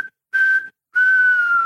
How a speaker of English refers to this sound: It's basically what happened. Final whistle went.